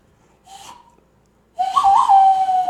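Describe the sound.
A person whistles a short Western-style movie theme: a brief opening phrase, a pause, then a louder, longer note that bends in pitch before holding steady. No one speaks.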